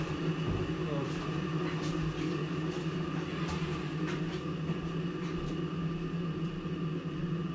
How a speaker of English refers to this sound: Anyone wants to listen to your kettle boiling?